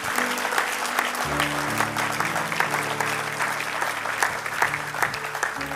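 An audience claps steadily as a clap offering to the Lord Jesus, dense applause filling the room for several seconds, with a sustained low musical tone, likely an organ or keyboard, humming underneath.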